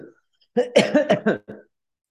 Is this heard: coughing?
yes